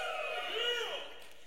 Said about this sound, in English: If you think that it's a time to keep, go ahead and cheer like Gino just threw a touchdown. Go ahead, right now.